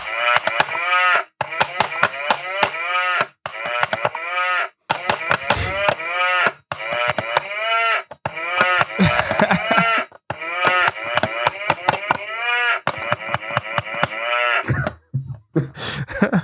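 A tune played entirely with sampled cow moos, each note a short pitched bellow, following a bouncy rhythm in quick phrases with brief gaps, loud and close, like a toy instrument.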